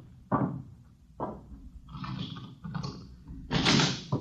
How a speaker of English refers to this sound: Open the door.